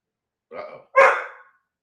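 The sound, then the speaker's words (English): Two quick barks from a dog named Tiger, the second louder and sharper than the first, with silence around them and no talking. “Tiger's worried about you”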